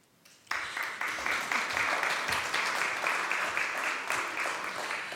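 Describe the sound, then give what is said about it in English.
An audience bursts into sustained applause for the reader after a long Bible reading from Nehemiah, following a brief quiet moment, many hands clapping in a dense, steady patter that holds strong for several seconds without words. “I'm so pleased you clapped her, because these are extremely long chapters, aren't they, in Nehemiah, with some challenging names, let's say.”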